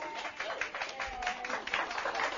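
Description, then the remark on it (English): A crowd applauds people who bring warm, freshly baked treats every week, with steady, dense clapping that stays fairly even in loudness throughout and a faint murmur of voices mixed into the sound. “You just got applauded.”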